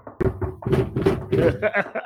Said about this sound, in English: If you're with me, knock on wood.